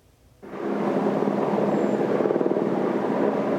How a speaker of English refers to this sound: Another day, another aerial assault. BC wildfire crews attacking one of several new fires burning near Nelson. Helicopters bucketing hotspots near Kokanee Creek Provincial Park.